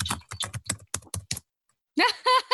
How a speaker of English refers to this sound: She's typing furiously. She's typing stuff.